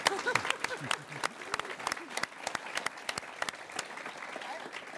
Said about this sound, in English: Actually, what I was really wanting to do is I was wanting to clap for all this. I really think it's exciting.